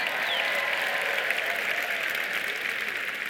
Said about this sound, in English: How many people here over 40? Raise your hands. Amazing. Let's clap it up for the over 40 crowd.